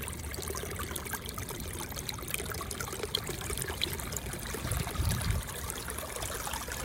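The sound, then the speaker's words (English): A small creek in Sibley park in the Oakland Hills runs steadily with runoff from heavy rain, recorded on a phone, water trickling and babbling over stones in a continuous wash, with a slightly fuller gurgle near the end. No voices are present. “we'd walk by these little creeks that were running where the runoff from all that rain was happening. And she just recorded the sound of the water.”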